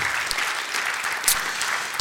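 A room full of people applauding steadily, dense overlapping claps at a moderate, even level with no pauses, heard from within the crowd.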